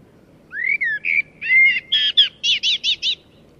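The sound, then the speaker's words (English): Played on request by an Alexa voice assistant, a common blackbird sings one clear phrase: a few sliding whistled notes building into a quick run of bright, repeated chirps, with only a faint low hum behind it. “Here is a common blackbird.”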